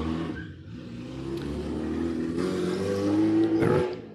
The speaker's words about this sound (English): There's some loud cars and engines going by.